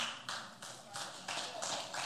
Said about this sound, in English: Yeah, you can clap to that if you want. Thank you.